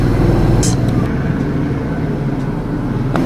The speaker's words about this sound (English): Could you hear the helicopter? Don't know what's going on outside at the moment.